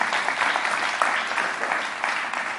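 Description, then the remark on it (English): A church audience claps for those who may have received Jesus for the first time, a dense, steady wash of many hands with a few sharper claps poking through, fairly loud and with no talking over it. “Let's clap it up for those who may have received Jesus the first time.”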